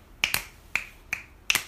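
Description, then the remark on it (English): Finger snaps, about six sharp crisp clicks, some in quick pairs, in an uneven rhythm over under two seconds, each with a bright ringing tone and brief decay. No one speaks. “Let's get a snap.”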